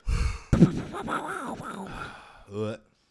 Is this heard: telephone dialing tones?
no